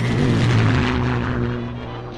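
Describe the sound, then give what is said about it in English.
A propeller airplane drones loudly overhead, its engine a steady, buzzing hum with a deep throb that eases off slightly toward the end. No one speaks. “when Amelia attended a stunt flying exhibition, she saw what these flying machines were capable of”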